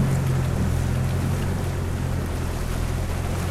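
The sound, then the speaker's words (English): A boat engine roars steadily and loud as the boat, the Orion, spins around, a deep constant drone with churning water and wind noise over it, no voices. “The engine roared as Lizard spun the Orion around, back towards the unpure things.”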